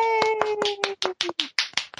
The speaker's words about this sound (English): I think we should clap.